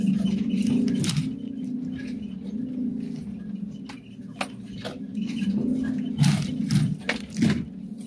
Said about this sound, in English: Birds, crows.